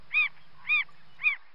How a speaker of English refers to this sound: We were in a lovely garden, and it was very quiet. Except for a single bird. And it sang strangely and sadly.